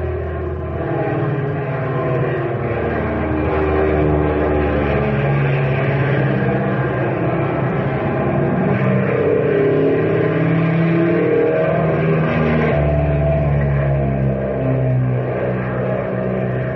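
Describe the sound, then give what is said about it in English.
A propeller airplane engine drones loudly and steadily in flight, its throbbing roar swelling slightly as it revs, with no voices over the continuous noise. “What an engine, and she sure handles like a breeze.”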